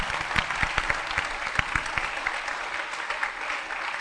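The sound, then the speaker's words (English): Steady applause from a group of people, a dense, continuous patter of many hands with a few sharper individual claps standing out, lasting the whole time at an even, moderate loudness. “Oh, I thought you were clapping.”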